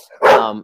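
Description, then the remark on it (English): A dog playing with a ball gives one short, loud yelp-like sound lasting about half a second, with a brief quieter rustle just before it. “And sorry again, dog ball.”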